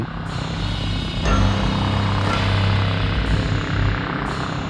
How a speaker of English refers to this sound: Like that could be a hammer and a bee buzzing. That's scary. I don't like that. You don't know what it is.